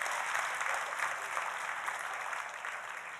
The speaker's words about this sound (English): Oh, if we're going to clap, clap. If y'all going to clap, clap.